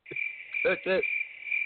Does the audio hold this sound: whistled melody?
no